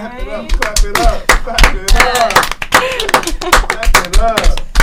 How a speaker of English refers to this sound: Clap it up.